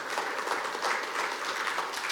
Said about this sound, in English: I don't know who's better at clapping, the Tremont campus or this campus. I love you, but if I had to guess, I would guess Tremont.